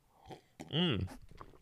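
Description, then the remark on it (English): A quick slurping sip of tea from an orange Dragon Ball Z mug, with a brief rising-and-falling whistly tone, followed by soft mouth and swallowing noises. Nobody speaks. “Probably not that I'm going to get paid from this, but let me take a sip.”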